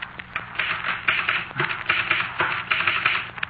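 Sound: typewriter typing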